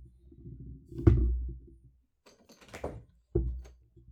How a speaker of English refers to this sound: Because if you go outside, I'm closing the door, and then you can't come back in, okay? All right. He went outside.